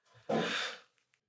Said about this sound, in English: Breathing. Did you do that for effect? I did that for effect. I saw what you did. I like it. Breathe. Increasing amount of oxygen. Yeah. Removing cortisol.